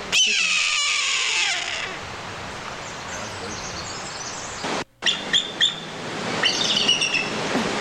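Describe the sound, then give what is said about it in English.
A loud, piercing screech, a voice imitating a hawk, cries out for about two seconds and slides downward, followed by a rough, breathy hiss and a few short, high squeaky chirps near the end. “People always use the hawk sound, bro.”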